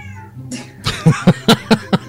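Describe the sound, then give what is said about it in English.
A cat meows, starting with a drawn-out cry and then breaking into a quick, evenly spaced run of short, loud calls. “My God, she's a cat.”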